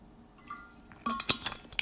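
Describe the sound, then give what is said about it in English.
Someone takes a giant gulp of water from a glass: a few sharp glassy clinks and taps follow a quiet stretch, with no talking. “I need to take a giant gulp of water.”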